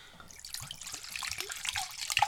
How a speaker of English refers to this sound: You know, so the first thing we're going to do is we're going to add our cup of schnapps.